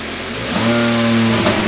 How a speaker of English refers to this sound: But now it has gotten incredibly quiet, which is how you know something important is about to go down. The car roars to life.